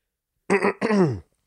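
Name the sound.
cough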